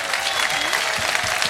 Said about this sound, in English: And with all these entertainers right here, give it up a round of applause right here.